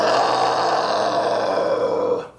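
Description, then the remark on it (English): A person lets out a loud, sustained screeching roar imitating a wyvern, harsh and raspy with strong high overtones, holding steady for about two seconds before cutting off. “Your did wyvern you comes up, does epic wyvern screech.”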